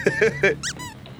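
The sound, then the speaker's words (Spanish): A small dog whimpers in a quick run of high, whiny cries, three short yelps followed by a couple of thinner, rising squeaks, with no one talking. “Es un perrito que dice, ¡ay, hi, New York!”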